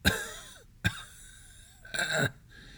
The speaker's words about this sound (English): Not until this pestilence has left my lungs. She coughed into a stained handkerchief.